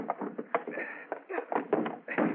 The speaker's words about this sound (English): help me push the desk against the door.